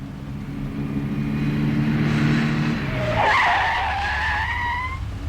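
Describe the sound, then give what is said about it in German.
A car's tires screech loudly as it brakes hard at a new traffic light with a shortened yellow phase in a town, a rising shrill squeal cutting over the low engine rumble and holding for a couple of seconds before fading, with no voices. “Das ist schon der fünfte, der seine Reifen abscheuert.”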